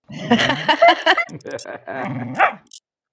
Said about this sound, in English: Just make sure Rennie O'Connor doesn't hear that dog barking